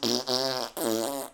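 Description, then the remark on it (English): Two loud, brassy fart sounds in quick succession, each about a second long with a buzzing, tonal quality, clear with no talking over them. “I'm still farting. Oh, I can't stop.”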